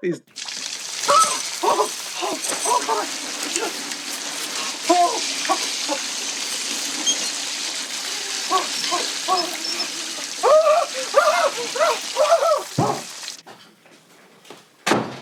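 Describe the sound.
Steady hissing spray of a cold shower with no hot water runs for about thirteen seconds, with a person's voice exclaiming and talking over it, before the water cuts off abruptly.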